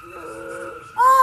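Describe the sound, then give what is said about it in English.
Tires squeal in a sustained, high-pitched skid that grows suddenly louder near the end, as a race car spins out of control in a huge double spin during a race, bringing out the caution. “One car does a huge double. The caution has come out.”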